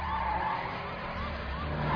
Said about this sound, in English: Man, these crazy car chases.